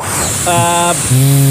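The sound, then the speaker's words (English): A hair dryer blowing: a steady, loud airy rush with a humming motor whine on top that changes pitch and grows stronger partway through. No one speaks. “That was a stab in the dark, the hair dryer.”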